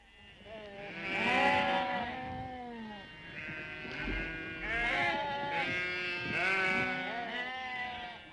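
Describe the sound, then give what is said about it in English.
A flock of sheep bleat over one another at sheep shearing around Blessington, with several wavering, quavering calls overlapping in a steady, fairly loud chorus that carries on for the whole stretch with no one speaking. “All round Blessington and everywhere else, sheep shearing began, with men using the hand-turned or the motor-driven machines.”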